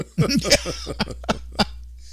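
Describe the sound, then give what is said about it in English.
A few throaty, voiced sounds from a man give way to three sharp coughs spaced about a third of a second apart, moderately loud. “Oh, he had a big cough there. Big cough.”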